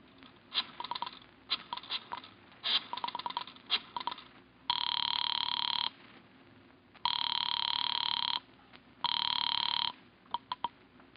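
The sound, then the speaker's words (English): A burst of rapid dialing clicks from a phone booth in a corner drugstore, then a telephone ringing three times through the line to Mr. Ralston's residence in long, steady, buzzy tones separated by pauses, with a few more clicks at the end. No one speaks. “It takes you 5 minutes to get to a phone booth in a corner drugstore.”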